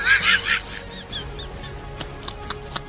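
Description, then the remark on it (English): A person makes loud, warbling bird-like cooing noises, imitating pigeons, followed by a few quieter, short fluttery bursts like wings flapping as the birds take off. “Let the pigeons loose.”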